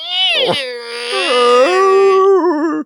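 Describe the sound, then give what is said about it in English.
A voice imitates the sound of a whale orgasm with a long, wavering, high-pitched moan that swoops up and down in pitch, loud and sustained with strong harmonics, no words spoken. “The sound of a whale orgasm.”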